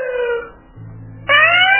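A police siren wails in two bursts: a falling tone that fades out, a short gap with a low hum, then a louder, higher tone that cuts in and climbs.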